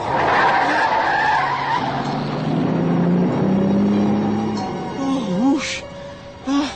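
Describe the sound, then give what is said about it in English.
Tires skid loudly and at length as a car on Interstate 70 swerves hard past an oncoming truck after the driver dozed off at the wheel, the roar of road and engine, then settling into a lower rumble with a few wavering tones near the end. “I must have dozed off at the wheel. Oh, honey, if you hadn't seen that truck.”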